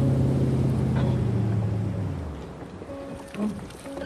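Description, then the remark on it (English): A motorboat coming in drones loudly at first, its low hum sliding down in pitch as it throttles back, then fading to a quieter rumble with faint water and background noise. “I heard in the background, I heard the boat coming in”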